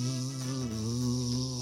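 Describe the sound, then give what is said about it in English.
A steady, droning buzz of a swarm of insects fills the whole moment, loud, holding an even pitch without pause or break. “So the first action is they buzz and fly.”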